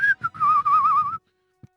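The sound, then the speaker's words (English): A person whistles a short, jaunty phrase: a couple of quick bright notes, then a wavering, warbling run lasting about a second, clear, followed by silence and a faint tap. “He was probably whistled as he walked out of the DMV.”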